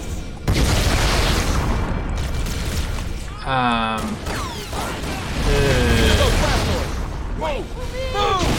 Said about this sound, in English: Whoa, explosions in front of us, careful, don't go near that fire.